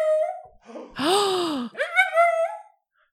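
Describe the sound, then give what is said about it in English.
A dog lets out two drawn-out, tonal bark-like vocalizations in quick succession, the first rising and falling in pitch, the second wavering and higher, after a shorter opening sound. “Bark one for yes.”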